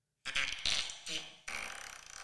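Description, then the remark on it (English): A loud fart sound effect from a soundboard app plays alone, a few sputtering wet bursts that end in a rapid, fluttering rasp. “That is Fart World.”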